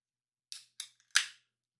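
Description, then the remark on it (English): A bottle of Kensington Amber Ale being opened: two quick sharp clicks, a faint tick, then a louder snap trailing into a brief hiss. No one speaks. “I'm going to open it up. Kensington Amber Ale.”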